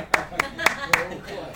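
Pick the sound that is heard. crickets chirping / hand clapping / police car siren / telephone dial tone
hand clapping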